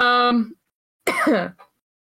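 Two loud vocal bursts separated by a short pause: a voiced, humming throat-clear followed by a harsher, rasping cough-like sound, then quiet.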